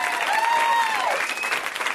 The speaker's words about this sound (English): Round of applause for that guy.